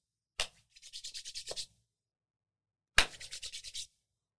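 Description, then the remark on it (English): A sharp hand clap followed by a quick run of brisk, rhythmic palm-rubbing strokes, then a pause and another clap with a shorter burst of rubbing. No one speaks. “I'm going to do the hand clap deal because”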